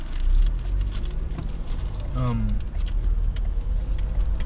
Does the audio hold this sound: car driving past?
yes